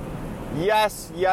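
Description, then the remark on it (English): Water jets from an automatic car wash rinse cycle spray over a car on a 32-degree day with a steady, rushing hiss, briefly surging brighter, while a voice speaks over the noise. “Oh, now it's rubbing the bottom of my car. Oh, rinse. Here comes the rinse cycle.”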